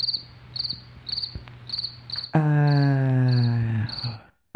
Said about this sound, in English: Crickets. Crickets.